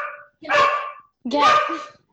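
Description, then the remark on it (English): A dog that has just come home gives two loud, drawn-out barks, each lasting over half a second with a brief pause between them, preceded by a short faint sound at the start. “Their dog came home, so.”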